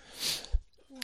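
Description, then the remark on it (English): A single loud sneeze: a sharp, breathy burst that quickly fades, followed by a soft low thump and a brief pause. “Bless you.”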